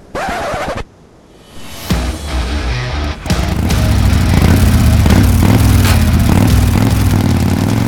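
A brief scratchy burst gives way to a motorcycle engine that starts up and revs into a loud, steady, rumbling drone as the rider drives it, continuing to the end with no voices.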